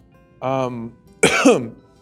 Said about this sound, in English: you can tell when he's talking, he's got a bit of a cough,